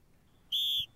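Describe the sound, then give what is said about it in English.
A referee's whistle signals halftime with one sharp, shrill, loud blast lasting about a third of a second, over a faint low background rumble with no talking. “There's the whistle. Now it's halftime.”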